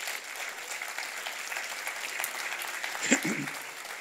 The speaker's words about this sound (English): Let's give all of our friends a round of applause as they make their way up here.